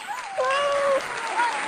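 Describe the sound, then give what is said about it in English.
A burst of applause, steady dense clapping with what sounds like whistles or cheers rising over it, fairly loud and continuous for the whole moment. “Please give pause and applause to Geralynn Cada.”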